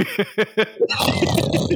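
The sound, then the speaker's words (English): A voice imitates snoring: four or five quick, rhythmic nasal grunts, then a loud, rough, rattling snore with a steady pulsing buzz. “It's just snoring.”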